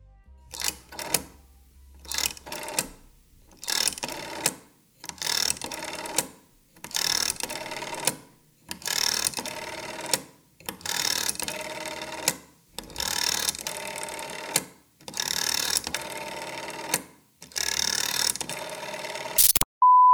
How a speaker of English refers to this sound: So by the mid 60s, telephones made the transition from rotary dials. Have you ever used a rotary dial phone?